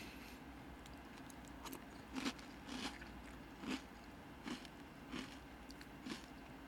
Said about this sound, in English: This is a major test of my talent of eating noises. Yeah. Sorry, it's super crunchy cereal.